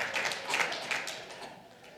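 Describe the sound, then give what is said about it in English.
A scattered round of audience applause, soft and dense, with individual claps blurring into a steady patter that fades slightly toward the end. No one speaks. “So, oh, y'all are going to clap.”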